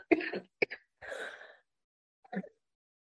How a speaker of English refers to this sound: I literally am making myself laugh so much that I'm coughing